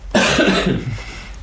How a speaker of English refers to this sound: But having said that, I'm going to cough, excuse me.